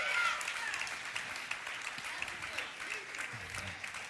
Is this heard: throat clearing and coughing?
no